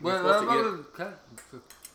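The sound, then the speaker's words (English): Plates and cutlery clink while people eat peach pie: a few sharp, bright metallic taps and scrapes follow a muffled, wordless voice humming or mumbling at the start. “It's just clinking plates.”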